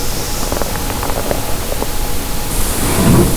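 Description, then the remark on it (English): A steady wash of loud, hissing radio static fills the whole stretch, crackling with faint irregular pops and brightening into a sharper hiss toward the end. No voices. “And then all of a sudden you hear the static.”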